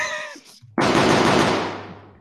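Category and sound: sound effect, gunfire sound effect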